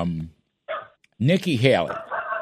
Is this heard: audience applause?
no